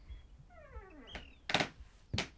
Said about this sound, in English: The door opens and footsteps traipse across the creaky floorboards.